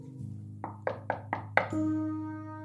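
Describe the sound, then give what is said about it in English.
Five evenly spaced knocks rap on a door in quick succession over a low steady hum, followed by a sustained ringing tone that slowly fades. “Someone's at the door.”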